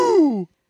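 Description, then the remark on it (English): A single eerie, voiced groan from one person, made with inward breathing, slides downward in pitch for about half a second before cutting off. It is fairly loud and followed by a faint breathy trace. “And it with inward breathing. Yeah. That was like a ghost was getting into your spirit.”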